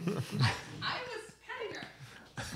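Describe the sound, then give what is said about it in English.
A 1-year-old German Shepherd Husky wolf mix dog, out playing with an Australian Shepherd, vocalizes in a run of short yips, whines and husky-like grumbles, loud at the start and end with brief pauses between the calls. “I recently adopted a 1-year-old German Shepherd Husky wolf mix who's out playing with Bart's Aussie Shepherd”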